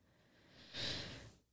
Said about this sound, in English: I'll invite you to take 3 slow, deep breaths. Breathing in.